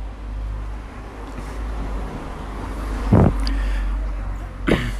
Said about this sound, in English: Another car.